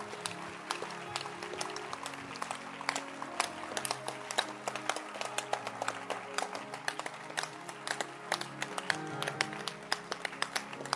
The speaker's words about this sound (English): No, no, no, no, no, no. Please stop clapping. I hear it's not over.